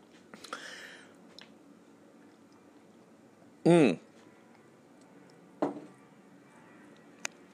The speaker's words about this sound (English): I'm drinking a fresh glass of ozonated water. Ozonated for 20 minutes.